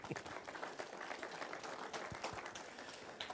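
A crowd applauds steadily, many hands clapping in a dense, continuous patter with a few sharper claps standing out, sustained throughout at moderate loudness.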